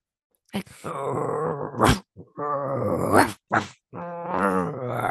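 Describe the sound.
A person growls and groans imitating hockey players crouched low and growling like dogs at each other, three drawn-out rumbling bursts with short breaths between them, fairly loud, with no other talking.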